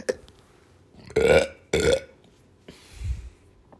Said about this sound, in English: I need a burp.